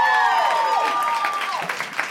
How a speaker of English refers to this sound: Alaska Thunderfuck. Guys, another round of applause for Alaska, please.